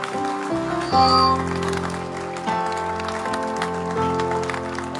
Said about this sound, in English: Father, Father, Father, keep clapping, keep praying.